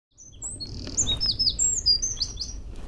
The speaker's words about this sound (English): I'm just about to enter Uphill Nature Reserve. I've already been greeted by swallows, skylarks, and great tits.